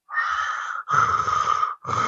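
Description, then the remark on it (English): A voice mimics Darth Vader's loud, hard mechanical breathing: a long rasping inhale, then a raspy exhale, and the start of another breath, slow and steady with no talking. “And by that, I mean, they hear hard breathing.”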